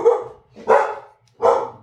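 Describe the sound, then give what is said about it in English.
Dogs barking in three loud, sharp bursts, each bark rough and full-bodied, spaced about half a second apart, with no one speaking. “The dogs are vigilant, keeping us safe from... Absolutely nothing.”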